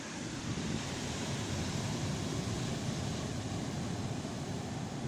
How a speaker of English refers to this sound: That's a hell of an ocean. Makes me feel like taking a nap. Going for a swim. Isn't it beautiful? Yeah. Just the sound of the sea, of the waves.